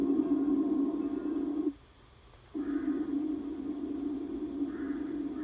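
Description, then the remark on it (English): An airplane drones with a steady, low-pitched engine hum that holds constant, dropping out abruptly for under a second midway before resuming at the same level. “I hear an airplane.”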